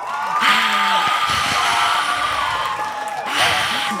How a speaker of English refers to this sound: Wow, you guys brought in the live crowd for me.